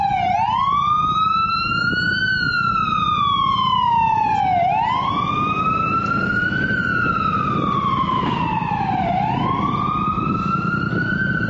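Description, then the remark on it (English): An FDNY ambulance siren wails loudly, its pitch sweeping slowly up and down in long repeating cycles over a steady low rumble of street traffic. “Ambulance. An FDNY ambulance.”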